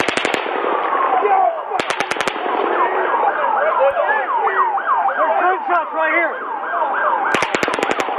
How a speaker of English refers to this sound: Then Paddock fires a fifth burst. It's around 22 bullets in three short volleys.